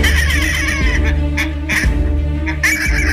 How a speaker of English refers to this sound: a bird which, for a time, was named for McCormick. We now know it as the South Polar Skua, sometimes called the Raptor of the South.